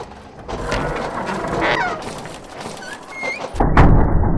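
A heavy door swings shut with a low, solid thud near the end, preceded by a few seconds of rumbling movement and faint creaking squeaks, with no voices.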